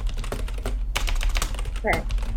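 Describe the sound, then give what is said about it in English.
Rapid, uneven clicking of keys on a computer keyboard, fairly loud, with a brief low murmur of voice partway through over a steady background hum. “Bro, typing.”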